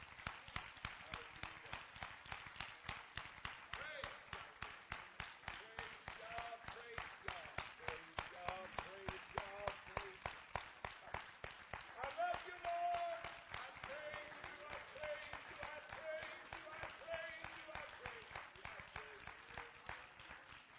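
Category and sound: crowd, audience clapping hands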